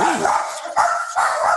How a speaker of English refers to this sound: They say hi. The dogs say hi. Come on, guys. Get over here. It's just the mailman.